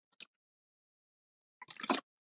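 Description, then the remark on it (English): Someone getting a drink of water: a brief soft clatter, a pause, then a short splashy burst of liquid sound lasting under half a second. Quiet overall, with no one talking. “Sorry, just getting some water.”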